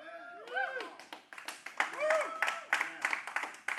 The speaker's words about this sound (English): That was okay. That was kind of like a golf clap. That was kind of like, you know, they got on the green.